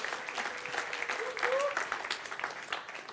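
An audience claps steadily to welcome a couple invited to share their story, a dense, even patter of many hands at moderate loudness, with a brief rising whistle-like tone partway through.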